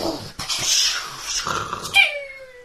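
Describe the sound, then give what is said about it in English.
A voice imitates a firework shooting up: a breathy, hissing whoosh for over a second, then a sudden whistling tone that slides gradually downward in pitch and fades away. “Was that firework? I guess so, yeah. That's what it sounded like.”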